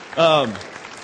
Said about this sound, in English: Give middle schooler volunteers a round of applause.